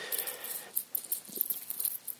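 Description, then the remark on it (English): Wooden basement stairs creak under a series of quick, irregular footsteps of someone heading down to the basement, with soft scuffs and faint groans of the treads; no one speaks. “You can hear those stairs are creaking.”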